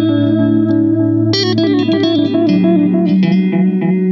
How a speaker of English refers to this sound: What you can do as well is put a spring reverb in with it. Mm. Now you've got a spring reverb as well.